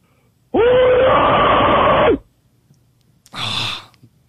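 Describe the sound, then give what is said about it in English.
A recorded voicemail of a person screaming: a single loud, raw scream lasting under two seconds, then a short breathy gasp or exhale after a brief pause, slightly distorted like a phone recording. “How about a scream mail? Yeah, let's do one.”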